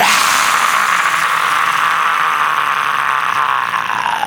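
A man's scream performed for Wolf Holt, loud and harsh, held steadily for about four seconds with a raspy, noisy edge before sagging slightly in pitch at the end; no one talks over it.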